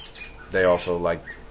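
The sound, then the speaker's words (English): A bird in a bamboo tree in springtime gives a single harsh, squawking call that rises and falls over about half a second, clear against a quiet outdoor background. “There's a little jockeying for power in the bird community in my bamboo tree.”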